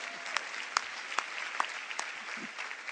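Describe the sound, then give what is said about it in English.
An audience claps steadily throughout, a dense, even patter of many hands with a few sharper, louder claps standing out above the rest and no voices on top. “Let us not applaud for the toxic macho culture.”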